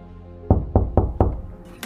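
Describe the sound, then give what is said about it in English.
Four firm knocks on a door in a quick, even rhythm, heavy, each with a dull wooden thud, followed by a brief faint rustle. “Okay, let's knock into nothing again.”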